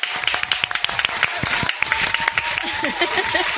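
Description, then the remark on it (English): A few people clap in a quick, irregular burst of sharp claps lasting several seconds, with voices chattering and calling out underneath. “I felt like I felt like that should have had an applause break.”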